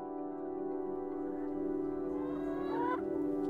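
A flock of chickens on a farm in Ayrshire clucks and murmurs in a steady chorus, with one bird letting out a sharper rising squawk near the end. No one speaks.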